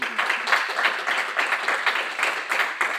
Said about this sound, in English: and I just want to hope you'll join me in giving him a round of applause.